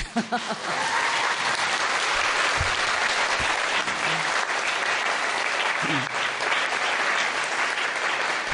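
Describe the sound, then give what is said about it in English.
A crowd applauds their Master, a spiritual teacher, steadily, dense clapping filling the whole stretch at an even, loud level, with a few faint voices surfacing briefly beneath it. “How about we all earn, 30,000 extra points here by giving Master a round of applause?”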